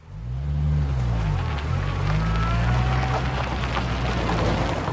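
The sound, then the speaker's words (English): A stuck minivan's engine revs hard and steadily for several seconds, its low drone rising and dipping in pitch, with a loud hiss of spinning tires or spray over it. Continuous, no talking. “Shoot. It's stuck. Dispatch, we're going to need a tow truck over here for a grounded minivan.”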